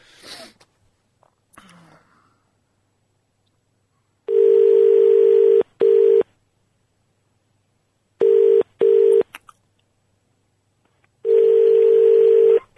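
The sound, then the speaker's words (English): A loud, steady electronic telephone tone after a caller to a radio phone-in hangs up, sounding in several long bursts separated by short gaps and silences, preceded by a couple of faint handling noises. “He's put the phone down.”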